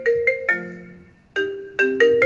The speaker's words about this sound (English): Oh my god, hold on, give me one second. What? My mom's calling.